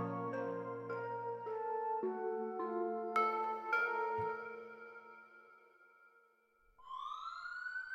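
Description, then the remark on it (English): Police and ambulance sirens sound together at a chaotic crime scene at a suburban family home, ambulances lining the street and police cars still pulling up. Their tones step between pitches and overlap, fading slightly before a fresh rising wail cuts in near the end. Fairly loud, with no one speaking. “Ambulances lined the street, police cars were still pulling up, and police dogs were already patrolling in search of the large man who just wreaked havoc on this suburban family home.”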